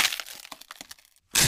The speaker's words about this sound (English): the broom snapped in two!